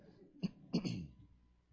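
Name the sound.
cough into the microphone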